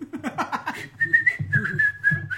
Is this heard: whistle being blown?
yes